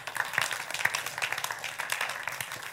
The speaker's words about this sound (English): Clap your hands for God.